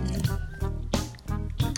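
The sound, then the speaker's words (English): Someone gulps down water, three wet, squishy swallows in a steady rhythm with no talking. “Excuse me, I had to drink some water.”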